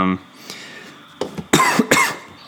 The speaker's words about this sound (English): I have a horrible cough.